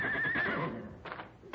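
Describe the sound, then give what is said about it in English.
A distant horse, Black Thunder, whinnies: a high, quavering call that wobbles in pitch and trails off, followed by a couple of short, breathy bursts. Faint overall, with no one speaking. “That must be Black Thunder way off there. He's a mean one, all right.”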